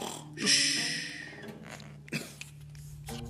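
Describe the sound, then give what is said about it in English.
A loud, rasping snore rumbles out over a low droning hum, followed about a second later by a shorter snort-like burst, with no talking. “Then the giant fell asleep in his chair and snored so loudly that the castle shook.”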